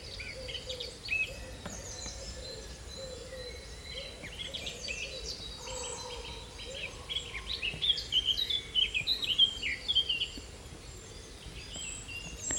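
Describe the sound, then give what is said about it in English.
A distant woodpecker's laughing call, a quick run of repeated notes, rises out of a steady woodland bird chorus with insects buzzing faintly in the background. No one speaks. “I think that would take a keen ear, but it's a woodpecker. And actually, just then, you could hear it in the distance, that laughing call.”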